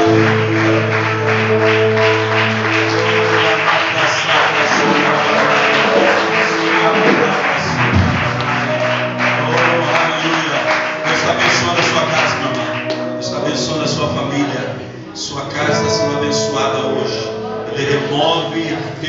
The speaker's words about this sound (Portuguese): Aplauda mais uma vez, Jesus. Aleluia.